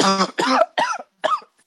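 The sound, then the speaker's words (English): A loud fit of coughing: four harsh, raspy bursts in quick succession, each abrupt and separated by brief pauses, with no talking. “That was one of the worst coughs I had all day.”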